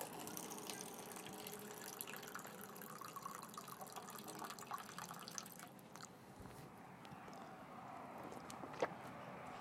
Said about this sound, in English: I'm going to grab a quick drink of water,